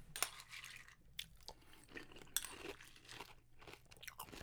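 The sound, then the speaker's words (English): Unsweetened vanilla almond milk poured onto dry Raisin Bran cereal flakes: a steady, soft crackling rustle with a few sharp clicks scattered through it, fairly quiet, with no one talking. “So it's unsweetened vanilla almond milk. So here we go. Here's the pour.”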